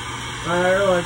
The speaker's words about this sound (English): White noise air dryer. Oh, creepy. You know what it sounds like, don't you?